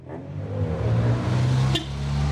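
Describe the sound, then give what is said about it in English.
A car engine idles in Bebop's car park with a steady, low, droning rumble throughout, broken only by a brief sharp click partway through. No one speaks. “In the car park, no one gets out of their car.”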